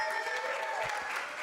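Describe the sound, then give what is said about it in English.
A burst of audience applause for a man being celebrated, many hands clapping in a dense, steady patter at a fairly loud level with no one speaking over it. “Let's applaud this man real quick.”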